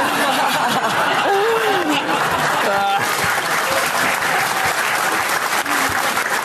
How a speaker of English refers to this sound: Can always count on a good fart joke to get applause.